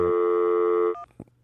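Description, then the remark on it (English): A loud, steady electronic telephone line tone on a landline call as the caller redials holds for about a second, then cuts off abruptly, followed by a faint click and a brief thump on a quiet line. No one speaks. “Oh, my God, he's redialing it.”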